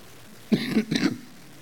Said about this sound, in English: I don't have the coronavirus, y'all. I've had this cough for like 2 years.